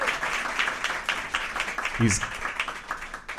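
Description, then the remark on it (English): A live audience breaks into a full round of applause for a birthday, dense and steady clapping that fills the whole stretch, with a brief voice rising over the crowd partway through. “Big round of applause for”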